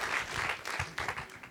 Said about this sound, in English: Si usted lo recibe, déles aplausos. If you receive that, give the Lord a hand clap.